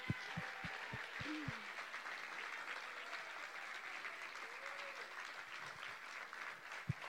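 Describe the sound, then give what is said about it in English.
A crowd applauds steadily to thank volunteers from decorating week and summer base camp week, a dense wash of clapping that holds at an even level throughout, with a few sharper individual claps standing out at the start and near the end. “And if you were here in any capacity, decorating week, summer base camp week, whatever, please stand up for a second because we would love to give you a round of applause and thank you.”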